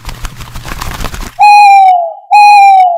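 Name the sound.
owl hooting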